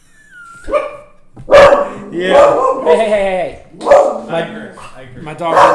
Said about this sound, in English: My dog didn't like the word dongle, so now I'm pulling his tail to get him to stop barking.